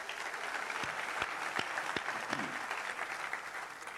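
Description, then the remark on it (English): A church audience claps together before being seated, in steady, dense applause, many hands overlapping into a continuous wash with a few sharper individual claps standing out, sustained at moderate volume throughout. “Clap your hands and you may be seated.”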